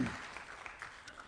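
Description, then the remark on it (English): An audience claps together in a steady round of applause as staff exit, many hands producing a dense, crackling wash of sound at a moderate, even level with no voices standing out. “So anyway, would you please give them a round of applause as they, as the rest of staff and everybody exit off.”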